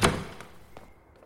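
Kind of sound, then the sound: household object, door opening and closing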